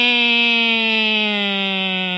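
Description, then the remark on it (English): A voice imitates an ambulance siren with one long, steady wail that drifts slowly downward in pitch, loud and unbroken for a couple of seconds, with no other talk. “I'm going to say to you ambulance sound four, and I would like you to come up with a better sound for an ambulance, okay?”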